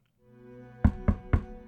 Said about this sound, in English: 3 more knocks happen, sounding much more deliberate.